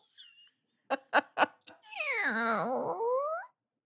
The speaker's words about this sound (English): So the tippy toeing, I'm opening the fridge now.